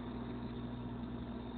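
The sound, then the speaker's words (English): A steady, low rumbling hum of traffic on a major north-south highway, heard from a mountainside almost 2 vertical kilometers above the nearest village; continuous and even with no distinct passing vehicles. No voices. “The nearest village is still almost 2 vertical kilometers below, but I can already hear the traffic of a major north-south connecting highway.”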